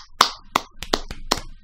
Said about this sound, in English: This is 50. Can we, like, have a round of applause for that?